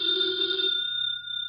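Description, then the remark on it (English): A telephone bell rings loudly, a steady metallic tone with bright harmonics that thins to a single sustained high ring before cutting off. No voices are heard. “You'd never ignore a phone call.”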